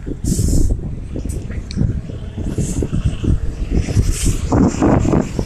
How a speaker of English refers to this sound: It's very windy now, very windy. Whoa, it's windy.